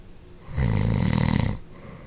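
A man snores once, a single loud, rumbling, rattling inhale lasting about a second, recorded close with no talking around it.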